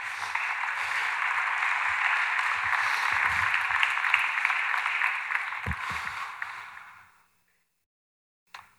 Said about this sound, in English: We should welcome one more time. That was kind of weak, guys. We're done with the golf clap, by the way.